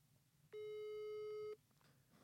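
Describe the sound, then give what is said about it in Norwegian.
A telephone busy signal on an outgoing call: one steady, mid-pitched electronic tone lasting about a second, loud against faint background hiss, then cutting off abruptly. “Vi skal prøve å ringe Espen.”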